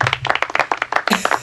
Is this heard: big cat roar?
no